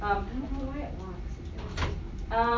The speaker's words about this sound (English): Would you mind just opening the door?